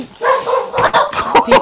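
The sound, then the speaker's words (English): Several pet dogs bark and yip in quick, overlapping bursts, loud, with a whiny edge between the sharper barks. “Listen, my dogs are pissed.”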